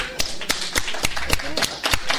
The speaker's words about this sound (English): And if you feel like it right now, I just encourage you to get up on your feet and give yourself a round of applause for being here.